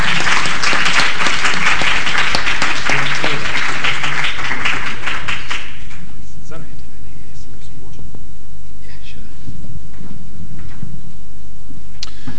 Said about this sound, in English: And I want to thank all my ABBA colleagues, the DFID, for enabling the ABBA process to go on, and all of us for clapping for ourselves and saying Asante Sana.